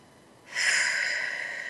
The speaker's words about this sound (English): Those of you who are able to, though, put one hand on your heart, one hand on your head. Take a big, deep belly breath. Eyes closed.